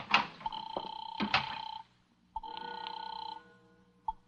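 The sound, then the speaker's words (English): A telephone rings in two bursts of about a second or more each, separated by a short pause, a bright, buzzy ring with no one speaking. “Okay, here, take it. It's ringing now.”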